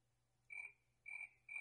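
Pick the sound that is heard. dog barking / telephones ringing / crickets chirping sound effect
crickets chirping sound effect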